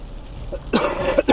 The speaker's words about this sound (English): Excuse me. You hear this cough? This is what I'm talking about.